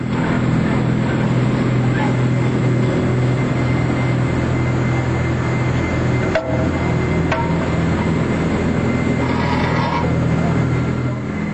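A loud, continuous industrial centrifuge hum, a large spinning mass separating solids from liquid, with steady low-pitched harmonic tones and a dense vibrating rumble, unbroken throughout apart from one brief click midway.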